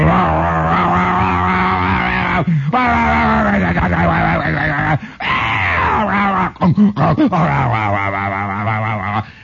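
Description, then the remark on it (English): A voice imitates white cab-over-engine semi-tractor trailer trucks going past a house: a loud, sustained, growling engine drone with rising and falling pitch, broken by a few short gaps and sputtering bursts before droning on again. “And you'd hear these fantastic white cab-over-engine trucks going by. You know that sound, that...”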